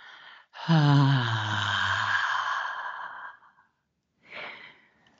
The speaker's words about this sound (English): Exhaling through your mouth. Another big, deep inhale. And exhaling on the sound of ah, the sound of God.